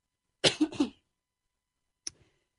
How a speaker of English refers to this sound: I coughed. No, you're okay.